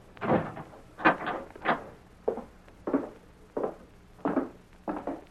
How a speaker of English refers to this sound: I'll lock the door.